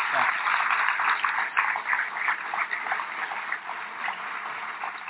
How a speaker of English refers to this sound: Please join me in giving them a warm round of applause for all of this.